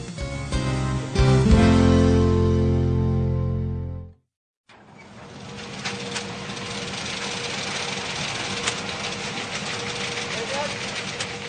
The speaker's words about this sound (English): The Amity Printing Company, Nanjing, China. The quiet, humming sound of equipment fills the air. These modern printing machines are able to produce large numbers of books very quickly.